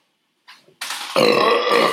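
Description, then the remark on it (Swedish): A loud, drawn-out burp that starts with a short rumble, then swells into a long, rough, gravelly belch lasting over a second. No one speaks. “Why fart and waste it when you can burp and taste?”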